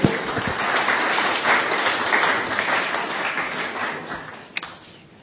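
A gentle round of applause from a gathered crowd, steady dense clapping that holds for several seconds before slowly thinning out.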